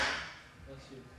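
A single sharp sneeze bursts out at the start, a loud, breathy blast that quickly fades, followed by faint murmuring voices in the background.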